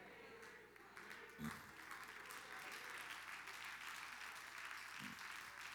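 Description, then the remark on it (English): An audience claps steadily during a church sermon while saying amen, a dense, continuous wash of many hands with no voices standing out, holding an even loudness throughout. “While we clap and say amen, all of us at one time in life have been envious of somebody else.”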